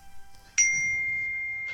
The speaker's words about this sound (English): Ba-ding. Ding, ding. You know you can put your phone on mute.